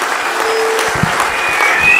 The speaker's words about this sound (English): That was Hitler. Hitler got the applause going.